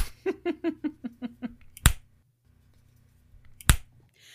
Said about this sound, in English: Okay. Kim, we will need a slapping sound effect.